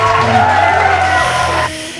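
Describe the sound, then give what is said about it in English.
A loud, dense burst of crowd cheering with whoops and yells for former Radio Sega DJ Esper K, steady for under two seconds before it drops off abruptly near the end. “Yeah, let's cheer as well, since it's the last time we'll be hearing about her on Radio Sega.”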